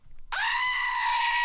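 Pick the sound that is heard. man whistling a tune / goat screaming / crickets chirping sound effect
goat screaming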